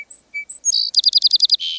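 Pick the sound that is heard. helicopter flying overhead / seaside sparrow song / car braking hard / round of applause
seaside sparrow song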